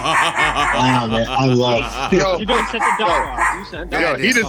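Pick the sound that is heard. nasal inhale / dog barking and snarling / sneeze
dog barking and snarling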